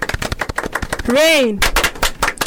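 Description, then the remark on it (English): Fast, uneven hand clapping patters like a rain shower, sharp and loud throughout, with a brief rising-then-falling vocal whoop in the middle; a round of applause called Kawedha Kilo that imitates showers. “And so on behalf of the Youth Link Up group, I want to appreciate you by giving you a round of applause, which is called Kawedha Kilo.”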